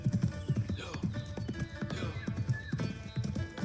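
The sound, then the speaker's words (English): Horse hooves clip-clop in a steady, repeating rhythm as the horse is ridden, with faint whinny-like tones and a voice-like murmur mixed in the background. “There he purchases a horse and continues on riding.”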